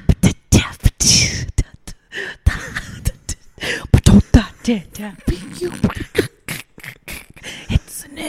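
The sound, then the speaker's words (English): A person coughs up a bit of chip eaten earlier: a bout of harsh, hacking coughs, a string of sharp bursts with a longer rasping clear of the throat, followed by spluttering throat and mouth noises. “No, I coughed up some chip that I'd had earlier.”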